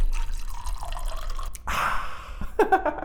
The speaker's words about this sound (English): Hey, Brandon, pour me another one.